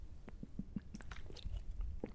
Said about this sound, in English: As I take a giant swig of water.